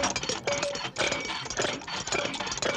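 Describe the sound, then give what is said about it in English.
A car engine runs with a dense, rattling mechanical roar, pulsing in uneven bursts with a faint whining tone, as a car is being fixed at Semraj Auto, an auto repair facility. No voices. “Yeah, that's when they're fixing the car.”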